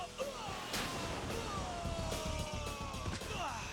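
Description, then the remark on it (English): Loud explosions from a frog-shaped bomb burst in a dense, chaotic barrage, with sharp cracks over a rumbling roar and whistling tones sliding downward throughout, like a hectic video-game battle. “A frog-shaped bomb.”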